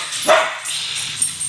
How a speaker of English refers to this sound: Willie's got a big bark.